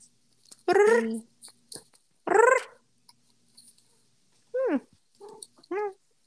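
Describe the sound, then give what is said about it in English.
A small dog lets out a series of short, high chirping whimpers, several separate yelps with pitch sweeps, with brief quiet gaps between them. “I've missed the little chirps. Little chirps from Yoda Bean?”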